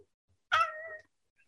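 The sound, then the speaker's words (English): A single meow from a female cat, about half a second long and clear, with a sharp onset and a steady, slightly drawn-out tone that fades. It sounds alone against a quiet background. “I'm going to see even your cat will agree.”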